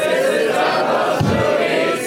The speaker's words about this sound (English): He just told that guy don't yell out and don't sing, and then he asked and then he cued us all to yell out and sing. It was very very mixed messagey.